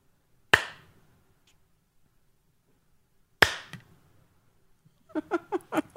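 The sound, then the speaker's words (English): Two sharp, loud hand claps to switch on a light ring out about three seconds apart with quiet between them, then a brief burst of voice follows at the end. “Clap on. Clap off. The clapper.”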